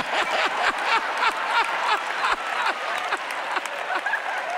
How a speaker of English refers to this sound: Now, if he's 80-something years old and clapping, I know everybody else in here can clap too.